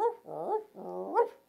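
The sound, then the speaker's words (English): A dog barks and whines in a few drawn-out, rising yelps, fairly loud, with no one talking over it. “He when he hears barking, sees dogs.”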